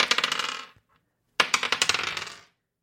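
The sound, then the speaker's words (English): Two quick bursts of D100 dice clattering and tumbling across a hard table, each a rapid series of bright clicks that slows and fades, separated by a short silence. No one speaks. “Give me a D100 dice to figure out the type of organization that has built a space laser.”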